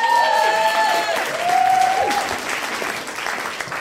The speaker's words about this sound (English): I would like you to give a huge round of applause as he comes to the stage